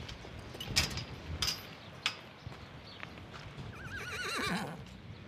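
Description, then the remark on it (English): A retrained standardbred horse lets out a wavering, rising-and-falling whinny near the end, after a few scattered hoof clops and sharp knocks over a steady windy outdoor background. “It's windy out there, but let's wander out and meet some of your retrained horses.”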